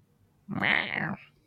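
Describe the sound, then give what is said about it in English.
A person's voice imitates a dragon but comes out as one drawn-out, cat-like meow, loud, lasting under a second with no other talk around it. “It's my dragon noise.”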